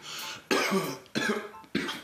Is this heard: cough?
yes